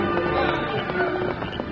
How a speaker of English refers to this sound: Riding hard, the deputies followed the directions of the masked man, cutting about 50 longhorns away from the rest of the livestock.